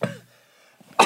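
Two sharp, close coughs separated by about a second of near silence, with the first trailing off briefly and the second cutting in abruptly at the end.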